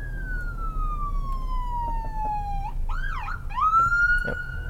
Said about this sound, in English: I'm rolling up on an ambulance right now, so you're about to hear some sirens.